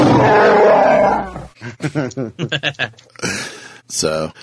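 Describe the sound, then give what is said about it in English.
A loud, raspy Wookiee-style roaring growl, done by a human voice, rumbles for about a second and a half, followed by a person speaking. “I need to stop before it sounds like the Star Wars holiday special”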